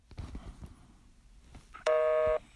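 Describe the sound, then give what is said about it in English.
Soft clicks and taps like phone keys being pressed as someone dials, then a loud, steady electronic busy-line tone sounding for about half a second as the call cannot get through. No one speaks. “she's on the phone with her friend Barb,”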